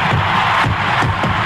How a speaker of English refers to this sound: This sellout crowd is cheering. Henry Aaron, the home run king of all time, 7:15. What a great moment.